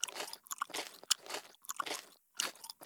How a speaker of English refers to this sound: I just have to finish chewing this bite of warm mealworms.